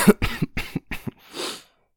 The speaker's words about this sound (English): Sorry for a bit of coughing.